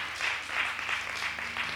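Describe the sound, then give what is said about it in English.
A group of people at a church service claps steadily together after a prayer, a dense, sustained wash of applause at moderate volume with no voices over it, rising and falling slightly for a couple of seconds. “And on that note, amen, you could clap. You can clap.”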